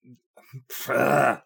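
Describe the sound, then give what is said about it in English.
A person grunts after swallowing something wrong. A few short throaty sounds are followed by one loud, strained grunt lasting about half a second, with no words spoken. “Sorry, excuse me. Swallowed something wrong again.”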